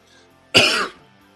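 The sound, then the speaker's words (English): A single sharp cough with a rough throat-clearing edge, fairly loud, lasting under half a second against a quiet background with no talking. “I should have a cough button, or push a button and I can cough.”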